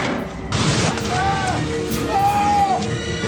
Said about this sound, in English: That's him screaming. And that's it for Danny Trejo.